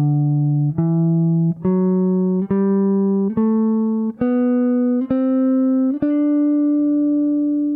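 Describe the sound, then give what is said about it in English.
A Mixolydian scale, mostly major sounding with a lowered seventh degree, played as eight steady, evenly spaced notes climbing stepwise in a bright, buzzy sustained tone, each note starting crisply and held until the next, with no voices. “Frank, can you give us a quick playthrough of a Mixolydian scale?”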